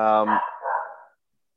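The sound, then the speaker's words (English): A dog barks twice in quick succession, a sharp, tonal first bark followed by a rougher, breathier one, fairly loud, then silence. “whose dog's doing the running again? It's mine.”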